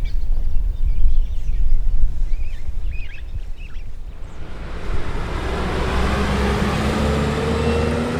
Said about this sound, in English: It doesn't matter what time of the day or night I step out the door, there's a roar from at least one direction. The highway, if conditions are just right, I hear all the traffic on the highway, the Jake brakes when they hit the rumble strips.